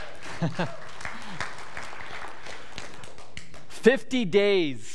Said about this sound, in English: We are the new creation. Amen. You can cheer loud for that.